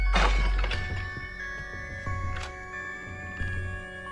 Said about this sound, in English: Doors are shutting on their own.